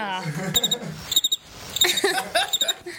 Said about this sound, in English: That was the most appropriate use the crickets has ever gotten on this show.